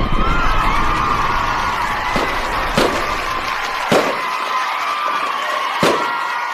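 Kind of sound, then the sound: sound effect, golden buzzer sound effect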